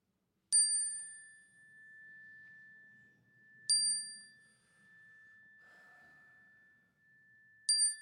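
A chime is struck three times during a worship service in a sanctuary, at slow, even intervals, each bright tone ringing out clearly and sustaining with a long, steady hum before fading, with faint murmuring voices low in the background.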